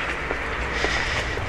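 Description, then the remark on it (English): Steady, loud wind coming off the water in the inlet in the West End area buffets a mobile recording microphone on a cold, windy day, a constant roaring rumble heavy in the low end with faint brief flutters, and no voices. “There's that wind.”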